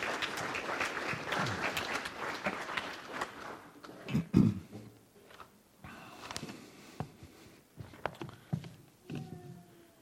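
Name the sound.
audience round of applause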